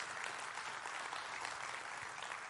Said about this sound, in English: Well, how about another round of applause for Corey and Clay and our choir and orchestra?